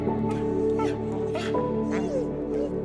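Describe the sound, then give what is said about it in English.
A dog yips and barks in short bursts, with whimpering whines in between, all over a steady, droning tonal background that runs throughout. “And together, we can set these dogs free.”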